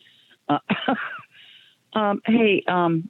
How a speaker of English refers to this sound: Excuse me, I'm clearing my throat.